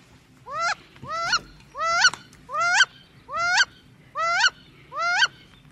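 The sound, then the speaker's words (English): Two wood ducks, one very close and one far away, give a series of seven loud, rising squealing calls at a steady, even pace, each about half a second long, with no one speaking. “we double-checked on that one, and we all agree that that is... wood duck.”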